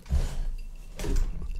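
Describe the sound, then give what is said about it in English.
A chair being adjusted: a low mechanical rumble and creak, then a brief louder hiss-like shift around the middle, moderately loud with no talking. “But first, I'm going to adjust my chair loudly.”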